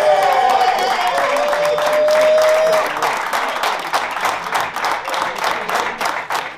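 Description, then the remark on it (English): University of Pittsburgh (Pitt) players cheer and clap loudly because they are headed to the NCAA tournament. A dense wash of applause and excited shouts, while a high whistle-like tone rises briefly in the first few seconds before the clapping continues on its own. “That was the boys at Pitt cheering because they're headed to the tournament.”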